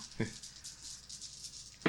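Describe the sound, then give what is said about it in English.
Five dice are rolled, heard as two short, sharp clattering knocks about a second and a half apart against a faint steady hiss. “So it's another dice. 5 one-shot dice.”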